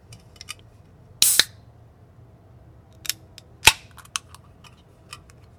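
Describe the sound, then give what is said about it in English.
An IPA beer being opened outside at night: a sharp crack and brief fizzing hiss, then a few scattered clicks and one more crisp snap over quiet background, with no talking. “because it's at night, I brought a beer outside with me.”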